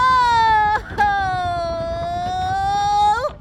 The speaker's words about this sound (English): I thought I heard baby crying.